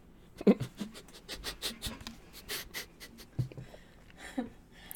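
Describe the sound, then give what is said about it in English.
Drawstrings repeatedly knock against a water bottle, making a quick, irregular string of light clicking taps with a faint scratchy rattle. Quiet overall, with no voices. “Also, that work bell you just heard was Mama's drawstrings banging against a, again, it's messing with my vocabulary, water bottle.”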